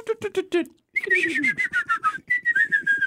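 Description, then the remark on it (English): Someone whistles an imitation of an eagle's screech: after a brief burst of rapid vocal yelps, two long, high, slightly falling whistled cries follow, fairly loud. “I mean, I'm pretty sure it was a little ways away, but it looked like the eagle picked it up and then dropped it and then did that eagle screech.”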